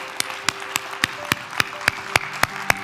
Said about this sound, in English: Let's applaud this day, okay?